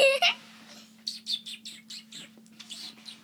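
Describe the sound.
A person imitates their pet bird's tweeting with a quick run of high, chirpy whistled notes, fairly loud, sounding like a pet bird calling repeatedly.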